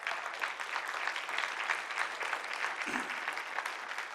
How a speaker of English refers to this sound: Can I get an agreement? How about an applause?